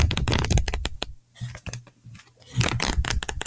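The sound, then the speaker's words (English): Pages of a little book, Don'ts for Wives, written in 1913, flipped quickly in two crisp bursts of rapid papery flutters, with a quieter pause of scattered rustles between them. No voices. “I'm flipping through a book.”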